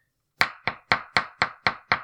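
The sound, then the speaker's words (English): Seven sharp, evenly spaced knocks on a door in a quick steady rhythm, each a crisp thud that fades fast, with no voices over them. “No, someone's at the door.”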